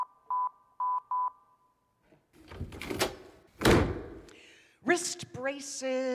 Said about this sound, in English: Oh, why won't this door open? You have got to be kidding me. What is wrong with this door?